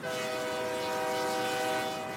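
A train horn blares in a sustained, steady chord over the rumble of a passing train, loud throughout with no pauses.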